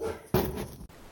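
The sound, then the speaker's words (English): A single sharp, loud dog bark given on command, preceded and followed by a quieter, noisy background with no talking. “So if you can get your dog kind of in a barky zone somewhere, anything that you know”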